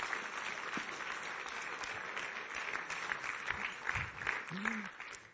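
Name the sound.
audience applause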